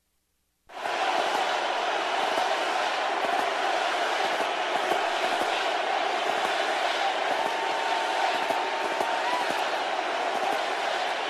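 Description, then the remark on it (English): A large crowd chants "USA" in unison for President Trump after a standing ovation for him and the First Lady, a dense, loud roar of many voices that rises abruptly and holds steady without pause for about ten seconds. “And just like at the rally tonight in Milwaukee, people were chanting last night for President Trump.”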